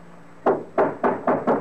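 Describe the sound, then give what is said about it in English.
Five solid knocks on a wooden door, struck loud in a quick, slightly uneven rhythm, with no voices over them. “Open the door, or I'll break it in.”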